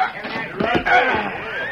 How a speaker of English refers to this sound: When the stage arrived in Frontier Town, Jed and Ida were on hand to meet it. They stood back while the driver brought the horses to a halt.